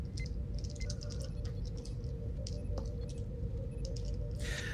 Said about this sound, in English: Rolling the dice. I roll a 13, a 14, and a 9. I'm sorry, a 6.